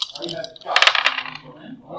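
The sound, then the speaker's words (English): A quick burst of hard little clicks and rattles as dice tumble across a tabletop during a game, fairly loud, settling after about a second, with faint voices around it. “Here, switch dice with me.”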